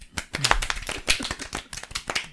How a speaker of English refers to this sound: I like that stoppage of clap that you just did.